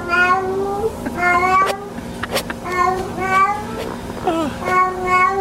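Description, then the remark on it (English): A cat yowls repeatedly in long, wavering cries that sound eerily like a crying baby, loud, with brief clicks and knocks between the calls and no one talking. “It's my daughter's cat, Sophie. And she does, apparently my daughter's cat, Sophie, does this every night.”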